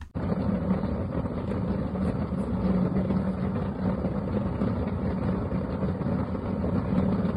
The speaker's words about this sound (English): Let's listen to the audio of Drew's gas fireplace, shall we? Forgive me, Drew's gas Yule log, shall we?